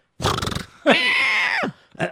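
A horse neighs: a shaky, fluttering burst, then a long, high, strained whinny that drops in pitch at the end, followed by a short snort.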